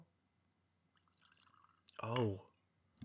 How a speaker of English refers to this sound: Into this custom glass that I got for my birthday. Oh my god. What I love about that is everyone listening to that right now is like, oh, he's a classy broad. He's got his whiskey out, he's pouring it into a custom glass.